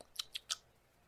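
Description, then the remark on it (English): A mouthful of whiskey chewed and swished in the Kentucky Chew tasting style, heard as three quick, crisp wet smacks, evenly spaced within half a second, then quiet. No one speaks. “That was the Kentucky Chew.”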